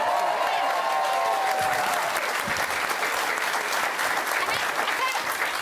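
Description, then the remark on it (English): Steady audience applause on a show, greeting a panelist's news that she is pregnant. Many hands clap densely at a constant loud level throughout, with a faint tonal murmur early on and no clear talk over it. “I would have done it a lot sooner if I'd known about the applause.”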